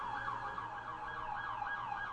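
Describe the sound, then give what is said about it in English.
An emergency vehicle siren wails continuously outside, its pitch sweeping up and down in a steady cycle, over a low background rumble, with no one speaking. “So now we got sirens and religious singing”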